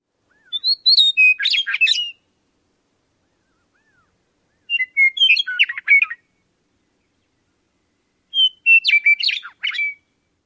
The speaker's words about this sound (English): Do you know what bird that was? It was the beautiful male song of the western meadowlark. Their song is always fun to hear.